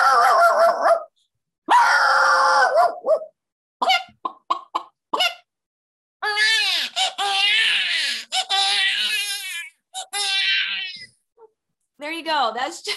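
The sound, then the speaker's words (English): A person vocally imitates a dog and a crying baby: short barking yelps at first, then long wavering wails like a crying baby, loud, in several bursts separated by brief pauses. “Like, she loved the rooster call, the dog, the baby.”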